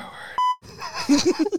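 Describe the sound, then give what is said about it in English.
A short, steady electronic censor bleep cuts in sharply, blanking out a slur, followed by a brief silence and then a man's voice continuing to talk. “Little beep.”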